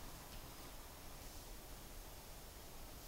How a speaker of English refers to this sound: The white noise is starting to almost sound more like water, like trickling water on top of the white noise.